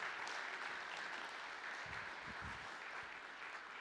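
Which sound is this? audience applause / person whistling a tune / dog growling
audience applause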